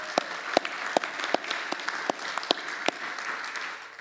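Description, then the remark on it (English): A crowd claps steadily for the staff and volunteers who took the kids to camp, a dense wash of many hands with a few louder, sharper claps standing out at a regular beat throughout, and no voices. “So let's just give applause to those people who did that.”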